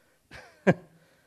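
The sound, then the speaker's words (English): A person clears their throat and then lets out a single sharp cough, fairly loud, with quiet before and after. “So, before I start coughing again, we're at the last point.”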